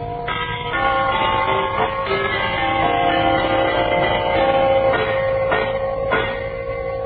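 Brass door chimes ring out with several struck, bell-like tones that overlap and sustain into a continuous shimmering hum, fairly loud, with no talking.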